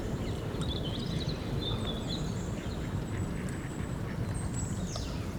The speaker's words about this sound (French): Des oiseaux.